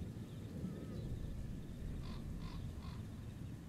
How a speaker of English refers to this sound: Hear the crows and ravens, but nothing happens, and your watch goes through uneventful